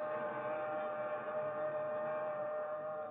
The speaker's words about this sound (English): He glances up the track, the fast-approaching southbound express.